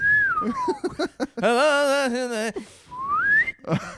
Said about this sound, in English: Give me that rock slide whistle. That's what I want. I'm the … of slide whistles.